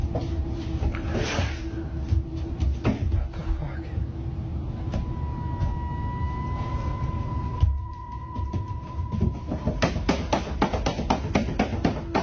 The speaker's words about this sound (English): It sounds like a cat scraping at a door. Not with that much force, because my cat does that. One of my cats does that, and it's not that aggressive.